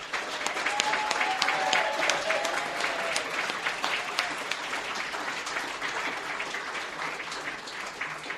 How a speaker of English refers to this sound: I'd like everyone one last time to applaud him and welcome up to the mic.